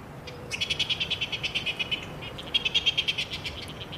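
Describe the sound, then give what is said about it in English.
A coast petrel calling in two bursts of rapid, evenly spaced high-pitched notes, each run about a dozen pulses long, over a low steady background hum with no voices. “During spring and summer, if you live in Auckland or Northland, you might hear their call overhead at night.”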